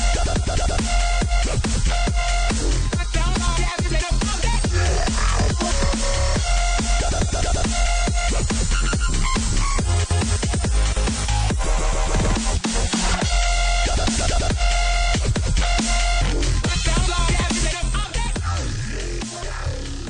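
Loud, dense electronic dance music with rapped vocals riding a steady, driving beat, playing continuously at full volume with heavy bass and bright, busy upper layers throughout.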